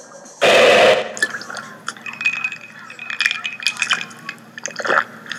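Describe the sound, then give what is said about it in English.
Whiskey pours into a glass, a brief rushing splash followed by a few seconds of bright trickling, bubbling gurgles as it fills. “Why is he drinking me? Why do I smell like whiskey? Oh, shit. I am whiskey. I've become a glass of whiskey on a bar.”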